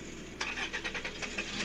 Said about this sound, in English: Okay, he definitely started that car twice. Yeah, definitely started the car twice. The fuck was that? Oh, that's that new dual core Honda.